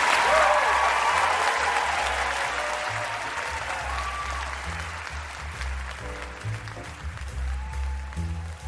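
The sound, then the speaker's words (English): Sustained audience applause for ice cream makers Ben Cohen and Jerry Greenfield, a dense wash of clapping that stays loud at first and then gradually tapers off over several seconds, with a low hum underneath. “Let's hear it for Ben and Jerry.”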